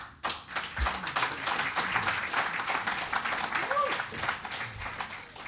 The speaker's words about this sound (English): Oh my God, I didn't think anyone would applaud that.